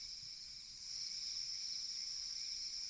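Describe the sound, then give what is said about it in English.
A steady, dense chorus of crickets trilling continuously on a summer night while a kettle is boiling, a high shimmering drone with no pauses and no voices. “That is crickets on a summer night whilst a kettle is boiling.”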